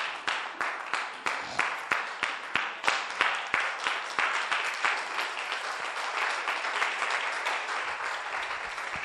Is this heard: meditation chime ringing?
no